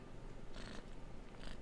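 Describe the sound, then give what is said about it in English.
A little male cat named Fox purrs steadily, a soft continuous rumble with a couple of breathy, airy swells as it breathes in and out. No one speaks. “Oh, look at that little kitty.”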